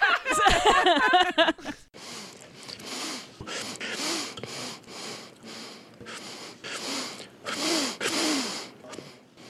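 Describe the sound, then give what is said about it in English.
A brief loud squeaky burst opens, then a run of repeated sniffs, quick nasal inhales in an uneven rhythm, some sharper and louder than others. “And if you know me, you know I like to sniff.”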